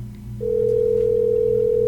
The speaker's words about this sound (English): So we're calling Jeff right now. You can hear the phone ringing.